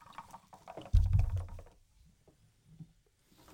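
Spa Rod sparkling water pours into red wine to make a Dutch version of tinto de verano, with a brief gurgling splash, followed by a faint, steady fizz of crackling bubbles that fades to near quiet.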